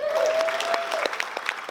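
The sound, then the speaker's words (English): A concert audience claps in a steady burst of applause for a musician coming on stage, many hands patting together in a dense, crackling wash with no voices rising above it. “An applause for”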